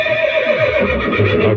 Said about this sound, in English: Horse. That's a sound effect. A morning show sound effect.